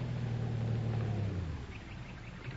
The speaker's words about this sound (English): Oh, hey, here comes a car. Oh, you get out on the road and flag it down.